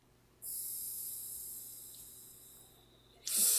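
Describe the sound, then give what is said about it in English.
A mouth-to-lung draw on an OXVA vape with the airflow set halfway open: a steady, airy hiss lasting about three seconds and slowly fading, then ending in a short, louder breathy rush. No one speaks. “So this is mouth to lung. I've got it halfway open at the moment.”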